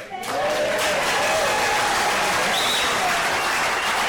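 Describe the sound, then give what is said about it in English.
A crowd bursts into loud, sustained applause with cheering voices at the end of a response by the governor of Florida, dense clapping filling the whole stretch at a steady, energetic level, with a brief whistle-like tone rising above it. “That was a very sanctimonious like response from the governor there, and I feel like that aggressive cheering and clapping at the end there was a bit overdone.”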